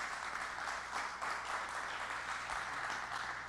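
A crowd applauds steadily in thanks to a speaker, a dense wash of many hands clapping at once with no clear individual claps, holding an even loudness for a few seconds.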